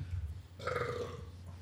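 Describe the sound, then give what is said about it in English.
A single muffled burp, fairly quiet, with a low rumble rising into a brief tonal croak, as though partly stifled behind closed lips. “I don't think I did a good enough job covering that burp up.”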